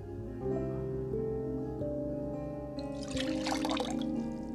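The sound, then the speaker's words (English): Water pours from a cup and splashes in a short, bright burst near the end, over a steady background of sustained musical tones. “That's pouring on the floor. There's nothing for the cup to fall into.”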